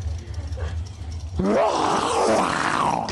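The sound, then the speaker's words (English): After a second of low rumbling, a man suddenly lets out a loud, gravelly, drawn-out roar, imitating a dragon with his voice. The roar stays strong and sustained until the end. “I might roar like a dragon when I come out of the burnout.”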